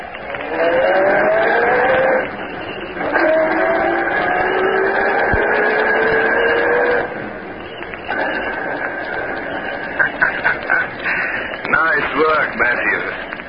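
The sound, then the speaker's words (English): A car engine runs loudly and steadily, its pitch rising and shifting as it pulls away, with muffled voices mixed in beneath the engine noise. “Okay, you two. Get in the car.”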